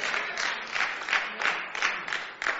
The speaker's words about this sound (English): Hear the rain. Wow, it's raining.